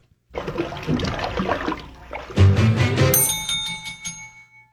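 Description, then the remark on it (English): A rushing, splashing noise builds, then two bells, rung by two radio quiz contestants in a tie, ring at the same moment near the end, their bright metallic tones overlapping and slowly fading out. No one speaks. “That's why I couldn't tell who rang their bell, because it must have been at the same time.”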